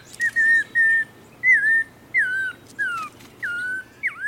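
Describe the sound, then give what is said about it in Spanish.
An Audubon's oriole sings a slow, halting series of about eight clear whistled notes, some sliding up and some down, close and distinct over a faint low hum. “Cerca, un bolsero cabeza negra suena como un niño que apenas está aprendiendo a silbar.”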